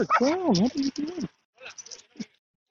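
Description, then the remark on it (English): A dog yelps and whines loudly in rising and falling bursts in the background in a public park, then goes quiet briefly before a few softer yips follow. “Not the dog that's in the background”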